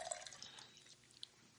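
Beer being poured, a soft fizzy trickle of liquid with a few bright drip-like plinks, heard faintly with no one speaking.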